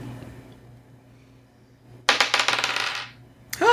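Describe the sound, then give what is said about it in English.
Dice rattle and clatter across a hard surface in a sharp, bright burst lasting about a second, rolled to see whether a freeze ray shot hits, after a stretch of quiet hum; a second clatter begins just as the sound ends. “Let me roll.”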